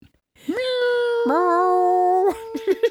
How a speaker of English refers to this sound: Try to harmonize this cat.